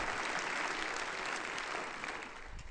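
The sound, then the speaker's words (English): An audience at a service applauds steadily for a newly built rack for tubular chimes, a dense wash of many hands clapping with no pauses, holding a fairly even loudness throughout and easing off slightly near the end. “So let's give a good round of applause for that effort.”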